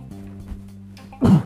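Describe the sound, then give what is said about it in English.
A single sharp sneeze bursts out loudly near the end, preceded by a second of quiet, low background hum with no talking. “Excuse me, I had to sneeze.”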